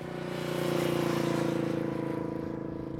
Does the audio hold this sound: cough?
no